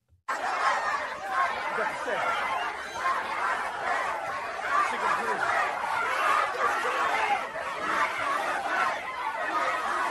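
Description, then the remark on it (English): A protest crowd chanting and shouting together as police officers try to clear the area, a dense, steady roar of many voices that holds at a fairly even loudness for about ten seconds with no single voice standing out. “Listen to what they're chanting out there.”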